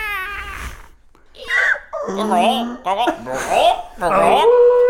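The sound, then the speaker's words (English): A voice imitates every bird and animal in a forest letting out an ear-splitting screech: loud, wavering, high-pitched wails that rise and fall in several bursts after a brief pause, like crying animals. “Every bird and animal in the vicinity lets out an ear-splitting screech.”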